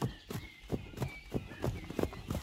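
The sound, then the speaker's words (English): Pony hooves trot steadily as the ponies Dapple and Tinkle's mother follow along after a group of men, a brisk, even clip-clop of about eight fairly loud hoofbeats over two and a half seconds, with no other sounds standing out. “They trotted along after the men, who were talking among themselves.”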